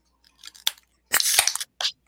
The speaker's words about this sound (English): And together, each Wednesday, we're cracking beers.